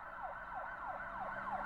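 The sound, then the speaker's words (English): An emergency siren on a slow-moving car driving past a house yelps in quick, repeating downward sweeps, about five cycles in under two seconds, steady and fairly faint with no one talking. “Have ourselves a little spoiler siren.”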